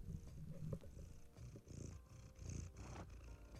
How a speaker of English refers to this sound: So today's episode, my cat Lady Marmalade, who you might actually be able to hear purring away in the background, she's sat on my lap currently.